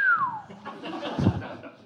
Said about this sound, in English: Yeah, with me doing a sort of slightly salacious whistle.